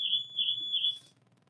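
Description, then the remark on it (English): A high-pitched electronic alarm sounds as one sustained, piercing tone with slight pulsing swells for about a second, then cuts off, leaving only a faint low rumble. No one speaks. “Anyway, I think I may have said something about austerity and the alarm went off.”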